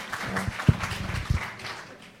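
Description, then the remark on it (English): An audience applauds with a steady, dense patter of many hands clapping at once, holding a moderate level before gradually thinning out and fading toward the end. “You know, many of these, it's okay to applaud, it's fine, okay.”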